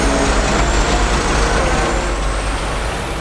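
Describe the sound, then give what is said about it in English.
Heavy trucks arrive with a wrecking crew, rumbling with a loud, steady hiss of air brakes filling the whole stretch, a dense, continuous mechanical roar with no voices. “All these trucks and wrecking crew people show up and we have every intention of breaking ground on Monday.”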